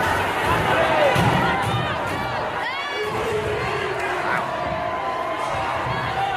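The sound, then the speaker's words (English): A dense, agitated crowd roars and shouts over one another as rioting breaks out at the Minnesota DFL (Democrats) endorsing convention in Minneapolis, with overlapping yelling voices and rising cries forming a constant, loud wall of chaotic noise. “Rioting broke out at the Democrats at Minnesota DFL endorsing convention in Minneapolis.”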